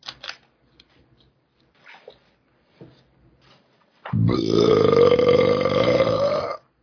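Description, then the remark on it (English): A single long, loud burp rumbles out after a few seconds of faint clicks and rustles, holding a low, gravelly drone with a slowly rising pitch for over two seconds before cutting off. “Better out than in, as Shrek would say.”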